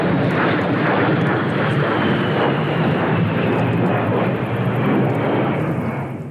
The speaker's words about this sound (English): The A-10 Warthog is a loud jet fighter plane.